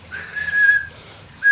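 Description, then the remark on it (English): A person whistles a steady, flat tone imitating a bat's echolocation call, which bats emit at 10 kilohertz, holding it for about half a second, pausing, then starting it again at the end. “So that they fly around, they call out this call at 10 kilohertz. And if you see the shape of the call, and I'll mimic it by whistling, it would sound like, would like be like this.”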